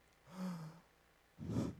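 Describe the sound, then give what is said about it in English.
A voice makes an exaggerated, theatrical gasp of surprise: a short voiced intake followed by a sharper breathy burst, fairly loud, with no talking. “Gasp. Secondary issues?”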